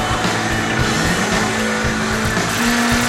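Loud, continuous roar of cars with revving engines and a high whining tone, dense and close throughout, with no talking.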